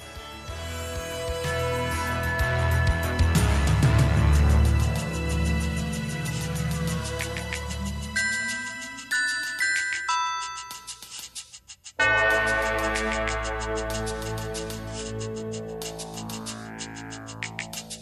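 Instrumental Christmas music with bright chiming bells ringing over a full, loud arrangement of deep bass and layered synth tones, shifting to a new section near the end, with no voices.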